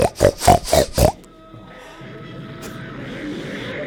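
pigs oinking and grunting

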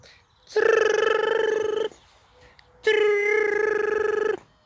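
mobile phone ringing

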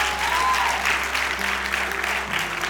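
audience clapping

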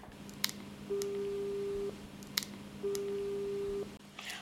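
telephone ringback tone

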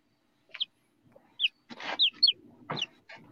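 chickens clucking

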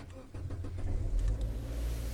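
car engine starting

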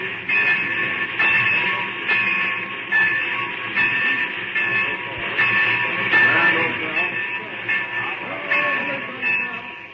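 train arriving

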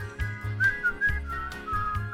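human whistling a melody

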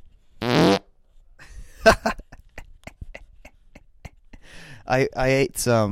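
fart sounds

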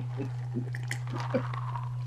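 sipping a drink

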